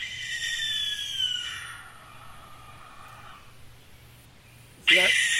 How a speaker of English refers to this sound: That's the barn owl. Sounds like a murder. Sounds like a ghost.